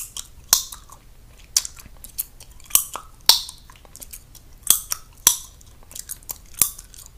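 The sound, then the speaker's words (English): Someone mimics wet gum chewing, smacking and snapping the gum in a loose, irregular rhythm of sharp pops, with no talking. “chewing gum in my ear, okay? She was popping the gum, too.”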